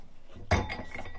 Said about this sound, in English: Put some ice in the glass while you're opening it.